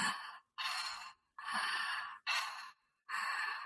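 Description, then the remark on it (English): Steady, audible open-mouth breaths cycle in and out with no pause at the top or bottom, five airy rushes in under four seconds, fairly loud with no talking; consciously controlled breathing in and out through the mouth as done in a breathing class. “Basically, when you go into a class, it's going to be probably about 45 minutes to an hour where you'll be doing consciously controlled breathing in and out through the mouth with no pause at the top and no pause at the bottom, kind of like this.”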